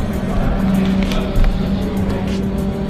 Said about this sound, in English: This is the McLaren GT4